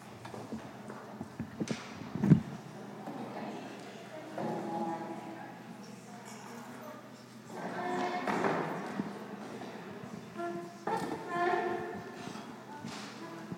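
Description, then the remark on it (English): Chairs scrape and knock across a hard floor in several separate bursts, with squeaky drags and a sharp thump, as seats are moved into the middle at ACCA, while voices murmur faintly. “I think we're all going to come up to the front, and we don't have very much time because I'm sure ACCA would like to close their doors, but let's move the seats into the middle.”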